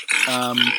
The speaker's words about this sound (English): So I think we've got a bit of this going on here. A little bit of that going on, sounded a little bit like a little bit of pig grunting, I think, here.